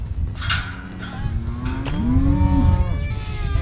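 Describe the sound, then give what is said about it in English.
A cow lets out a long, low, rising moo, with another fainter moo earlier, over a steady rumbling outdoor background; cattle just north of LaGrange, California, being belled before the herd's annual move to Stanislaus National Forest. “we visit Sherri and Bob Brennan, just north of LaGrange, California, to bell some cows”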